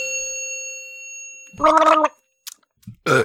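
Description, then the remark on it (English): Someone gargles a drink that burns in a loud, bubbly burst lasting about half a second, then short throaty noises and a final harsh exhale-like gargle, after a faint lingering ringing tone. “Oh my god, don't ever fucking gargle that.”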